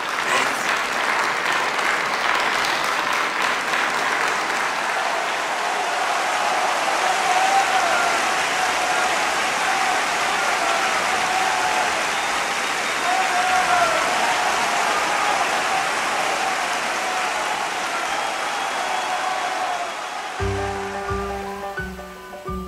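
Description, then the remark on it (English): A loud, roaring crowd in a gymnasium, in a Wes Anderson film scene, claps and cheers in a dense, steady wash of noise for about twenty seconds, then abruptly gives way to a few low, sustained tones. “And then we get that, classic Wes Anderson switch from regular motion into slow-mo, and suddenly it's an uproarious crowd and we're now viewing it from his head.”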